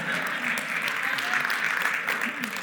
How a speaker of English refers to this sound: These people are great. Let's give these people a round of applause right here.